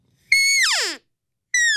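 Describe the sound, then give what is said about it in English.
An open reed elk call with an Enhancer tube slid into its end blows a high, steady, whistling note that slides down into a whiny, falling tail. A second high note starts and is cut off. No voices are heard. “And this is the new Enhancer tube. So you just slide that right into the end. And you get that little whiny noise at the end of it versus without it.”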